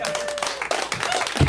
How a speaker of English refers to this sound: You can clap more than that, and you have to, because this next comic is their first time on the show, and you know what we do when it's their first time.